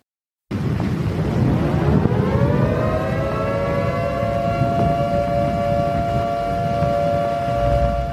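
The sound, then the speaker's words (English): An air raid siren of the Blitzkrieg winds up from a low growl to a sustained, wailing tone that holds steady and loud, layered over a rumbling low-end noise throughout. “Screeching sirens, falling bombs.”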